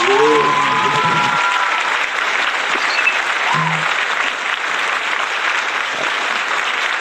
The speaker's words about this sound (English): Give him a round of applause for the new trick.